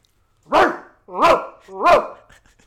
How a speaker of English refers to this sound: Why is that dog barking? Okay, just point it out. There's a dog barking.